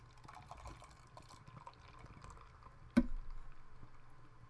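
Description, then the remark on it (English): Beer made in Corvallis, Oregon, 8.1% alcohol by volume, glugs and fizzes steadily as it is poured from cans into two wide-mouth pint glasses, with a sharp clink partway through before the foamy pouring carries on. No one speaks. “We're pouring into wide mouth glasses because that is the serving suggestion.”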